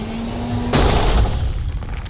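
A steady low hum is cut off by a sudden, loud smash of two sets of 3-inch steel plates, fired from hydraulic heels, into the side of a building, followed by about a second of crashing, shattering debris that slowly thins out.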